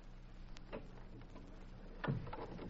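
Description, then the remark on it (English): A door is pushed closed, a faint knock early on and then a solid, muffled thump as it shuts, with no one talking over a low background hum. “We better shut this door.”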